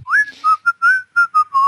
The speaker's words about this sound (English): Are you whistling the Tetris theme? No, I am not. Because that would have been perfect.